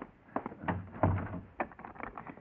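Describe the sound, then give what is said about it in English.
A door swings shut with a dull, heavy thump, surrounded by a handful of short clicks and rattles as the lock is worked; no one speaks. “Come in and close the door and lock it.”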